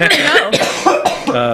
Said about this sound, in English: I feel like you need a Gravitron to curb your cough a little bit.